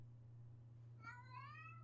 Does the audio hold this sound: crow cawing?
no